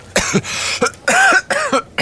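A series of harsh, loud coughs, roughly four or five bursts in quick succession with brief pauses between them, no talking.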